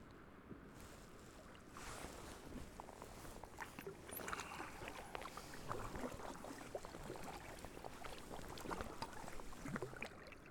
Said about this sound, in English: Just paddling up to a landing stage. So I think this is where the tour boats come in and bring people in to experience this.